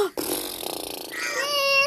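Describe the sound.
A wet, buzzy raspberry blown with the lips, a fluttering rattle lasting about a second, followed by a brief rising vocal sound.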